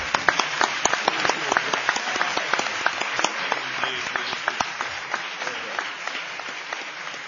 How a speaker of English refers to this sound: Can we have a round of applause for all our panelists?